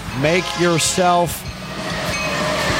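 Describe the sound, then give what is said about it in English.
A Brightline passenger train horn sounds in three short, loud blasts, followed by a steady rumbling roar of the train rolling past. “Take that train you just heard. That's Brightline.”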